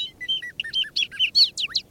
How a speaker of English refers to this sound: The bobolink may just be the happiest bird of spring. There's such delight in the bobolink's bubbly, jangling song.